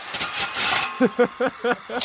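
A hand saw rasps through a plastic music cassette shell in quick back-and-forth strokes, sawing it nearly in half, first as a harsh scratchy hiss, then as five rhythmic squeaky, tonal grinds.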